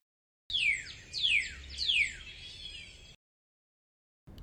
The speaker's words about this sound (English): This bird is quite loud. I know. I don't like birds that much.